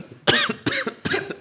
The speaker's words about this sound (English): coughing mid-talk is not very fancy, I gotta say. No, at least that covered my mouth.